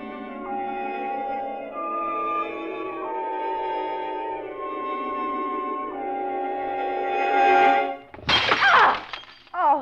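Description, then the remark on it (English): Sustained tonal music plays for several seconds, then a vase knocked off a mantel crashes and shatters in a loud, bright burst of breaking pottery, with scattered fragments rattling briefly afterward. “It was a vase. I knocked it off the mantle.”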